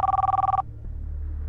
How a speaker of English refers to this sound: cell phones ringing whenever you went to a certain corner of the house, etc.